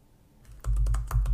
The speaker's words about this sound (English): Do I have the code? Why am I even typing this in?